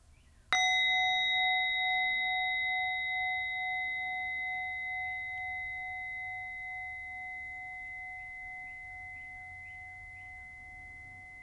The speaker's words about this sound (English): And I invite you to take 3 deep breaths as I invite the bell to end this meditation.